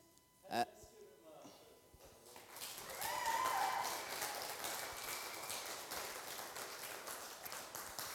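A short vocal burst, then an audience breaks into applause: a dense, steady crackle of many hands clapping that builds quickly and holds at a moderate level to the end.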